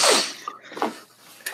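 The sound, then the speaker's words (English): Congested, wet-sounding sniffing through a plugged nose: one long, loud breathy sniff, then three shorter snuffly sniffs at uneven intervals, with no talking. “If you stop fucking sniffing like that.”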